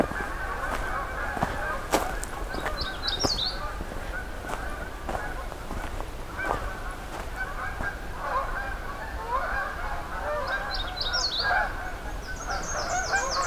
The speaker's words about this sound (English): And hearing some Canada geese coming in.